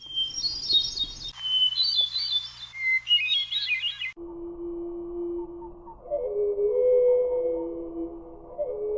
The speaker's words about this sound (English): Here's one that I've not heard in the wild. This is the North American hermit thrush. We're going to hear it at normal speed and then slowed down.